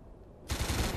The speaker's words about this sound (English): What was that? I don't know. Gunfire.